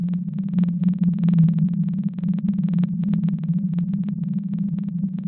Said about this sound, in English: Blue whales do make kind of a wide variety of sounds. Scientists are, like most things, are still trying to figure out exactly what these mean.